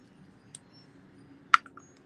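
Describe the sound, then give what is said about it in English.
Handling noises from headphones being taken off: a faint tap, then a sharper knock with a few small clicks and rustles, over a low steady hum. No one speaks. “I have the headphones out so you can probably hear a bunch of shuffling. It's because of the headphones are coming out.”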